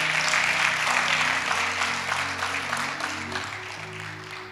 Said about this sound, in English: Or if you're going to clap, go ahead and clap.